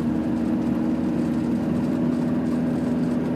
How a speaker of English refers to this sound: Annoying because I can't see what type of car it is. It's a very, now that's definitely an oldish car. Now that's, the lights are too close together to be a police car.